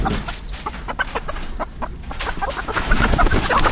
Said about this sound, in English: Okay, he's got him. Right. Hug a cockerel.